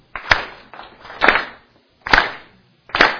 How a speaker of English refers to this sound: Now, I want you to clap in rhythm.